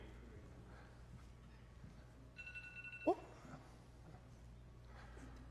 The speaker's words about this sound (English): Well, somebody's phone went off.